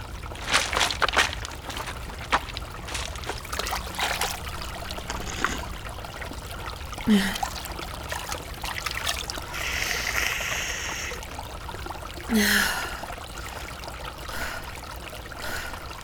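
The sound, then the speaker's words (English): A forest brook burbles and trickles steadily, with small splashes and gurgles rising above the continuous flow of running water. No voices. “The day had nearly fallen into nightfall, the last catches of sunlight breaking through the curtain of bark, and then the sounds of water caught by keen ears. Running water.”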